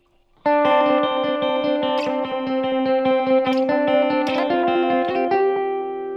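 An electric guitar plays a steady, rhythmic part run through an eighth-note delay, the repeats overlapping into a dense, shimmering wash that sustains loudly throughout with no voices.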